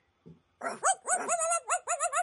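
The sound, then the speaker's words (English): Dogs whine and howl in a run of high, wavering cries that rise and fall one after another, fairly loud, with no talking. “And then the dogs started whining and howling. Fuck my life, she thought.”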